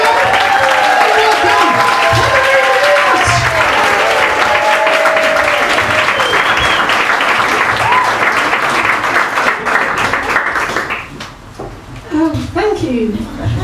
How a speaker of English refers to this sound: Go wild, start clapping.